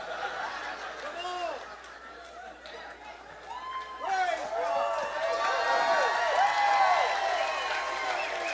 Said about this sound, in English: Why do you scream? I could bring my sophisticated friends if you wouldn't scream.